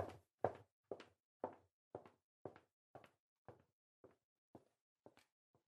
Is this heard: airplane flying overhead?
no